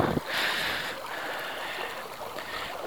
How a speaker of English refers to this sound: The creeks are flowing. Water, which is a source of life, is flowing.